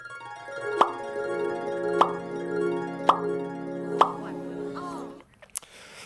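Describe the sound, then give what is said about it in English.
A short musical stinger: a sustained, richly harmonic tone punctuated by four evenly spaced percussive hits, ending abruptly with a faint click after about five seconds. No talking. “Here's the stinger.”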